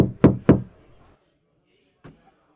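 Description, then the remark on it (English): A light knock on a door: two quick raps close together, then after a short pause a single softer tap, with quiet room tone between. “So, Caster, you are going to hear a light knock at your door.”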